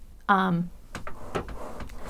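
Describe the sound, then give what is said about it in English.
A chair gives one loud, groaning creak, lasting about a third of a second, followed by a few soft clicks and knocks as it shifts. “You're gonna hear this chair a little loud.”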